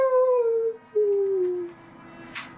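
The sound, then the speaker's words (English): A wolf howls once in the distance in a long, drawn-out wail that slides slowly downward in pitch, breaking briefly midway before trailing off; a faint rustle follows. No one speaks. “Off in the distance, a wolf howls.”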